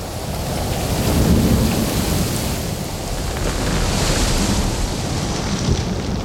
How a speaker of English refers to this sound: And now the storm blast came, and he was tyrannous and strong. He struck with his o'ertaking wings and chased us south along.